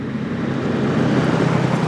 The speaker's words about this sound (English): This is what he hears a lot more now than geese. Truck after truck driving between the new production sites now surrounding his home on all sides.